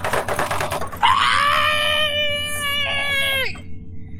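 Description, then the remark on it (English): A voice imitates a woman's muffled screaming behind a shut door as she rushes the door: one sustained, wavering cry that rises in pitch, holds for a couple of seconds, then cuts off abruptly, with a rough noisy bed underneath. “You would have to put in a card, and she starts rushing the door, screaming, red card, pulling red her card, hair.”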